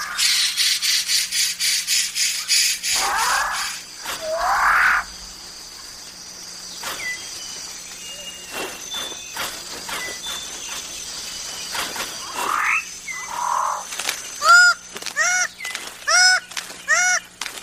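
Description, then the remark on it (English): Loud, harsh honking calls from birds of paradise ring out in a forest in New Guinea over a steady insect drone, ending in a quick series of repeated rising whistled notes. “In the great island of New Guinea, there are 42 different species of birds of paradise, each more bizarre than the last.”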